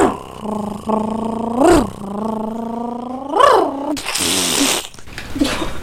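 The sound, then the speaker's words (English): A voice imitates a motorcycle engine with a steady buzzing hum that revs up in pitch twice, then breaks into a rough, hissing sputter near the end as the imitated motorcycle breaks down. “No, that was just me on the motorcycle.”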